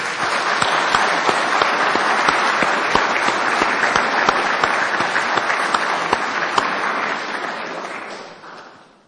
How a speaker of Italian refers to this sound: Oggi celebriamo la festa delle mamme. Diamo un applauso alle mamme.